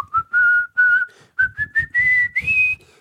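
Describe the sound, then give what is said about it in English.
A clear whistled tune, the chorus of a song, carried in a run of short phrases, the pitch stepping gradually upward, with soft low rhythmic sounds underneath and no talking. “And I sing it and the whole room goes wild because you need to do the whistling chorus.”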